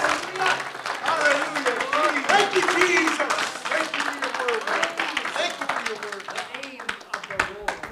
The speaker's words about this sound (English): Come on, why don't we just clap our hands and thank the Lord together. Thank you, Jesus.